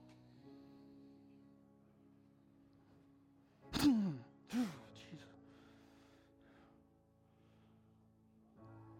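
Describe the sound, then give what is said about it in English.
Two sharp, loud gasping breaths drawn in quick succession as people breathe in deeply during a guided breathing exercise, each with a rough voiced edge, rise above a quiet steady hum before settling back to near silence. “Keep breathing deep. Breathe in.”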